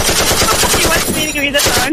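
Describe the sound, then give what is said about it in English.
Loud rapid gunfire, a sustained burst of automatic shots in a fast, even rhythm lasting about two seconds before cutting off abruptly. “Let's give him the guns.”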